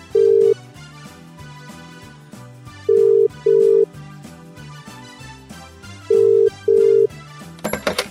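An outgoing call's ringback tone sounds in steady double bursts, a clear mid-pitched purr repeating every few seconds over quiet background music, ending with a brief clatter as the line is picked up.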